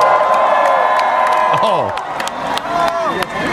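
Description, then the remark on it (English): The crowd at the Flog Gnaw festival cheers loudly and steadily after being asked to make some noise, a dense roar full of high whoops and shouts, with scattered sharp claps cutting through and a slight dip in volume partway. “Flognaw, make some noise for yourself tonight.”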